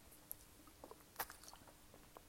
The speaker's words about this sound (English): So I just got to have a sip of water.